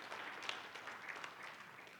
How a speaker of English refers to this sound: You can clap.